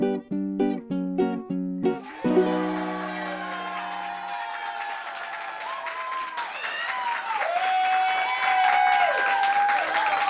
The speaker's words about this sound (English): Hello. Thank you so much for that loud, powerful round of applause.